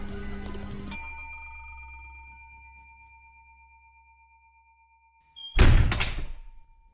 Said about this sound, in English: The doors slammed shut